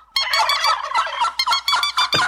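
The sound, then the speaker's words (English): A flock of turkeys gobbles frantically as a man slaps them, loud overlapping warbling calls without pause, chaotic, with no talking. “What did the turkeys do? That one really sounds like crying.”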